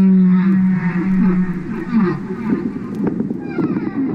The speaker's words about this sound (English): He's at home in landlocked Vermont, listening to the songs of his beloved humpback whales in a wood-paneled living room. And that sort of theme evolves as the whale sings it.